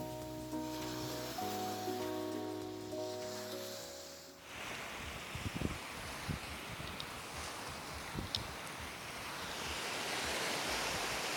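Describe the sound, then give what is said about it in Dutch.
A brief musical tone fades out, then steady ocean surf takes over, a broad rushing wash of waves breaking on a beach with occasional louder crashes and some wind noise, recorded during a beach walk. “Op de achtergrond hoor je de zee.”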